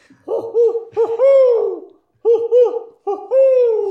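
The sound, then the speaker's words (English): Someone imitates an owl, giving a loud series of wavering hoots in two bursts separated by a short pause, with no words spoken. “I think the owl got him.”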